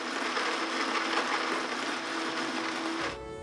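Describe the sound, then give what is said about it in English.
A blender, activated by the Alexa voice assistant, whirs loudly and steadily for about three seconds, a dense, buzzing motor roar with a faint humming tone, then cuts off abruptly, leaving a quieter low hum. “Activating blender.”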